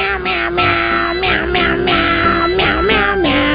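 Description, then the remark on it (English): A man sings Christmas carols using only cat-like meows in place of words, his voice loud, with drawn-out wavering notes flowing one into the next. “It's the guy in the office that talks like a cat, singing your favorite Christmas carols.”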